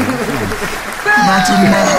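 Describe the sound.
A man talks briefly, then a canned burst of applause played from an applause button kicks in at about the midpoint and keeps up a steady, loud clapping roar to the end, with a thin whistle over it.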